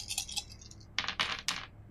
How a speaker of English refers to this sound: Okay, so give me a roll. That's minus two athletics and three violence. So that's five dice.